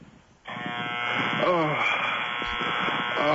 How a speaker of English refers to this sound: What is this? That's his blender. He's making him shake.